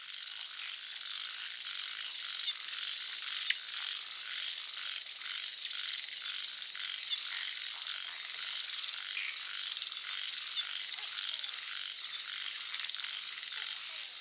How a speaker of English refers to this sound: That sounds a little bit familiar. What was it exactly? This was mostly the frogs in my garden.